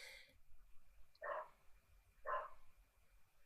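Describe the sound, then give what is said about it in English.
Two faint dog barks sound about a second apart over a low, steady background hum. No one speaks. “Like the dogs in the background.”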